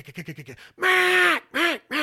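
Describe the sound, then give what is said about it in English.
A duck call blows a mallard hail: a quick run of six clipped quacks, then one long, loud, drawn-out quack followed by two shorter ones, alone. “She's going to stand on your name, "Chad." And she's going to really put passion and emphasis on it. That's what you're telling those ducks.”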